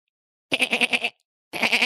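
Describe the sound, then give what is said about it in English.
A person imitates a goat's bleat with two wavering, nasal calls, the first longer and pulsing, then a short pause before a second shorter one, fairly loud. “That was a goat.”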